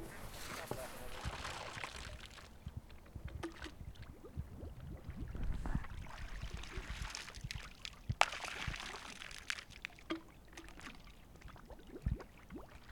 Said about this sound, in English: takes a sample by first plunging a bottle attached to a pole into the middle of the creek where there is more water flow. He rinses the bottle a few times in order to remove residue from previous samples before collecting his sample.